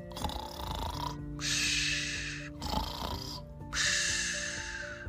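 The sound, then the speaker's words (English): A sleeping Kermode bear snores in two slow cycles, each a deep, rattling inhale followed by a long, breathy whoosh of exhale, steady with no talking. “That was the snoring sound of a magical Kermode bear.”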